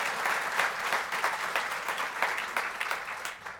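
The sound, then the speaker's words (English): An audience applauds steadily for the corrections staff in the room, a dense patter of many hands clapping at once that holds at moderate loudness before starting to thin out near the end. “Although I was incarcerated, let's give them a warm round of applause, right?”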